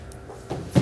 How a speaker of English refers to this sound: close that door, it's always the most annoying sound.